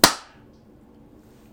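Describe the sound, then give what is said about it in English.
A single sharp hand clap, crisp and loud, struck to sync audio, ringing out briefly before fading into a low, steady background hum with no voices. “No matter how long we've been doing the clap to line everything up”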